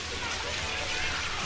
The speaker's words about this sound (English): Everyone's trying to get out of the rain.